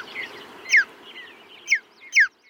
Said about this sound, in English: After listening through hours of sound archives, they found a bird chirp that they really liked, the mountain bluebird. There was a richness to it, and so we isolated just one chirp of this bird in the background.